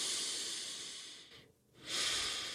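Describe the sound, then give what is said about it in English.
A long, airy breath drawn in during a breathing exercise, with fingers on the collarbone moving apart as the rib cage expands, then a brief pause and another strong breath follows. No talking. “And as you breathe in, you want to see your fingers come apart like so.”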